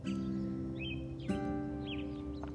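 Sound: birds singing at sunrise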